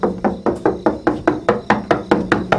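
Rapid, steady knocking on a door, about a dozen firm raps in quick even succession, fairly loud, with no voices.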